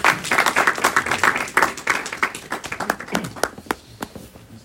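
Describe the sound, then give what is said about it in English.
An audience applauds a speaker after a talk with a dense burst of overlapping hand claps that gradually thins out into a few scattered, separate claps before fading away. “Clap it now.”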